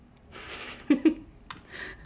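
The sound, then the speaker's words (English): Two quick gulps in rapid succession as someone swallows a drink, framed by soft breaths before and after in an otherwise quiet setting. “ASMR, that gulp.”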